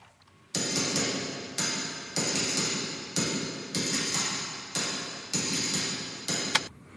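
A tambourine strikes in a steady, loping rhythm, each bright jingling hit blooming into a dense, shimmering plate-reverb wash that fills the gaps between beats. No voices are heard.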